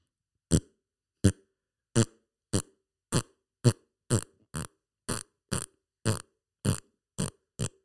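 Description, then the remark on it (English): A voice imitates the way a person used to fart, with about a dozen short, buzzing blurts in a quick, steady rhythm, each roughly half a second apart, fairly loud, with no talking. “used to fart like this.”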